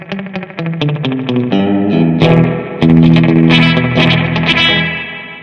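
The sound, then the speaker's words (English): An electric guitar plays a quick run of single notes, then sustained chords, through a twin channel analog delay set to slapback with reverb built into the signal flow, colored by a short slapback echo and a wash of reverb; loud, with no voices. “It's a twin channel analog delay with reverb built right into the signal flow.”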